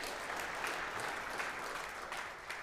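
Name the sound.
audience round of applause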